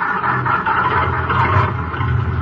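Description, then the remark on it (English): A taxi cab's engine runs as the cab starts and drives off, with a steady, low rumbling drone and a broad mechanical whir, holding an even loudness throughout with no voices. “Fish those keys out of your pocket and get this bucket of bolts going.”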